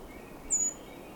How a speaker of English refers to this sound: Hearing some Swainson's thrush, too.